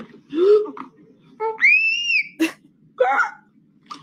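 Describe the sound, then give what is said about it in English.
A baby lets out loud, shrill screams in several short bursts, one long rising-and-falling squeal standing out, the cries sounding strangely grown-up and harsh, with no talking. “I'm new here, so let me go into this baby cry after this adult scream.”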